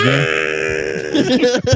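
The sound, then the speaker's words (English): A woman lets out a loud, sustained yell, sampled in a song, held steady for about a second before breaking into rougher, choppy bursts that fade in and out. “She's just doing a yell.”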